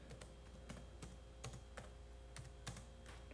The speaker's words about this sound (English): Yeah, this is just some one finger typing sounds, my friend.